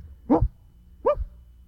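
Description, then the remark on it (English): A dog barks twice, two short, sharp woofs spaced under a second apart, clear with no one speaking. “Crap, you damn pooch.”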